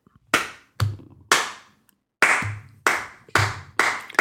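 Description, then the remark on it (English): A slow clap: seven sharp, loud hand claps at a deliberate, steady pace, each ringing out briefly, with a short pause after the third. No one speaks. “Slow clap.”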